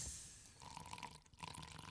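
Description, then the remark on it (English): Straight Hennessy cognac trickles steadily into a glass for about two seconds, a soft gurgling pour with a faint rising ring as the glass fills, no voices. “I'm trying to capture the audio of this pour up right here.”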